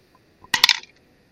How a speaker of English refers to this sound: I'm going to try another dice. Ooh, use the azure blue dice.